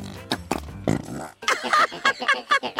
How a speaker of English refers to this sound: You know, Grabstack kept asking me to stop using the fart putty.